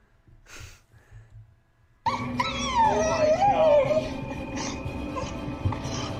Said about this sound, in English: I think the dog really adds to the shot. I think he added that in.